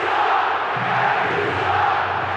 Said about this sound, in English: Crowd starts a chant you heard probably first in Philly or New York.